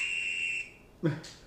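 A single steady, high-pitched whistle held for about half a second, close and fairly loud, then it cuts off and a brief breathy vocal sound follows.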